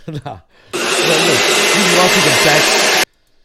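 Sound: vacuum cleaner sound effect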